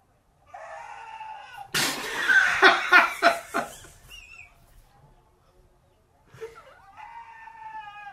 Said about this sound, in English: We're going to get to the bottom of this goat versus sheep issue. This is a sheep.